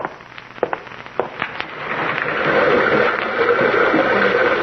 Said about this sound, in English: Open the window, son. I've a hankering to hear the big rocky river rushing by down there in the gorge.